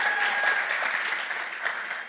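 An audience applauds in a steady round of clapping, a dense crackle of many hands that holds fairly even before tapering slightly toward the end, with no voices over it.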